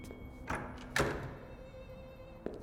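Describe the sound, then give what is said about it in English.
A door swings shut with a dull, solid thud, preceded by a softer knock and followed by a faint tap, over a quiet background hum. “This he said only after he was outside with the door closed safely behind him.”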